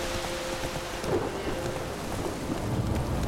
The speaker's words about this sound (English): It's still a rainy evening. Very dreary.